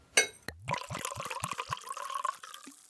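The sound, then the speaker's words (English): A drink glugs from a bottle into a glass, a quick clink followed by a steady pour with rhythmic gurgles, fairly loud, ending with a soft thunk as the bottle is set down. “Now, where's that bottle? Ah, yes, yes, yes. Here it is.”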